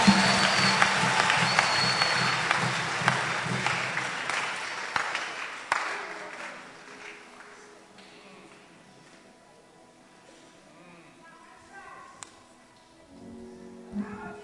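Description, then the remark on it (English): A church audience claps hands for Jesus in a loud, dense burst of applause before being seated, the clapping gradually fading over several seconds, leaving quieter scattered murmurs and faint sounds. “Clap your hands for Jesus and let be seated.”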